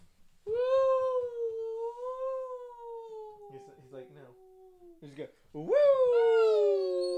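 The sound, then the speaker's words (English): A dog vocalizes with two drawn-out, wavering "woo" howls, fairly loud, separated by a short pause filled with small snuffly noises. “Woo! He just go woo! Yeah, he agrees.”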